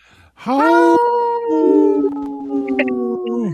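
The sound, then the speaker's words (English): A person on the Native Roots Radio show imitates a wolf, letting out one long, loud howl that rises, wavers and holds for about three seconds before trailing off, along with laughter, with no talking around it. “You howled and laughed, and I don't remember wolves laughing, but that was a good one.”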